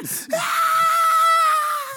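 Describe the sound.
A voice imitates the battle yelling of Dragon Ball Z: one long, strained, high-pitched scream held steadily for nearly two seconds after a brief breathy intake, loud.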